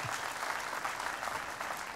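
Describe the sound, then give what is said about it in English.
An audience applauds the bringing of about 95,000 Jews from Ethiopia to Israel, breaking into steady, sustained applause, a dense wash of many hands clapping at once with no pauses across the whole stretch, loud and even throughout. “That's worthy of applause.”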